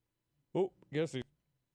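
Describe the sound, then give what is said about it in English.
A single loud sneeze: a short voiced intake followed by a sharp, breathy burst, with silence around it. “Could have used the cough button, but.”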